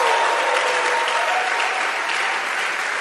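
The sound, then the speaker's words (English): An audience, standing on their feet, claps their hands in a steady, dense wash of applause that holds at an even, fairly loud level throughout, with no voices standing out. “You miss a good place to stand to your feet to clap your hands.”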